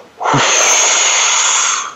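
A single loud, forceful exhale whooshes out to empty the lungs as the first step of the 4-7-8 breathing technique, a sustained airy rush lasting nearly two seconds before tapering off, with no talking.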